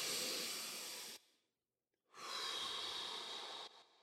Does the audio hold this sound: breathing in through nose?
yes